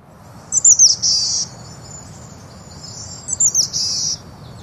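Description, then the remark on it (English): A boreal chickadee gives two short, buzzy, wheezy calls, each a quick stuttering burst, separated by a few seconds of quiet outdoor air with a faint low background hum. “But the boreal does have a unique call.”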